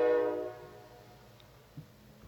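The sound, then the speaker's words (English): A loud, harmonic train horn blares and fades within half a second, leaving a low, steady rumble of a train passing on a railroad track in Clear, Alabama, with a brief thump near the end. “Who decided to shoot a podcast on the railroad track in Clear, Alabama?”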